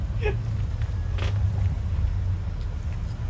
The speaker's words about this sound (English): Is it going to rip my bumper off? No, you're going to go fine. Straight up it. You're hit the gas.